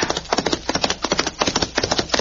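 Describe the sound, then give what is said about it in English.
The hooves of the horse Diablo gallop in a fast, steady rhythm as it chases another horse, each stride a cluster of sharp, loud thuds, with no voices over them. “Now, show me you can catch that other horse.”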